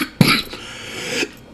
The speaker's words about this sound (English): No, not drugs fucked up, like my cough. You got the COVID? No, I got tested.